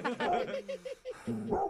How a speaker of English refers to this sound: Is that Agnes? That's their dog, right? Yeah, it is. But I don't know where. I don't know where she is.